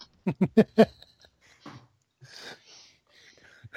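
A gummy bears wrapper crinkles: four quick, sharp crackles in a row, then scattered rustling and softer crinkly bursts that come and go for a few seconds, with no voices.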